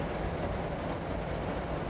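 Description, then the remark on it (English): Rain drums steadily on a car during a thunderstorm with lightning, picking up again, a dense, continuous hiss of countless drops over a low rumble, even in loudness throughout with no voices. “And the rain's picking up again.”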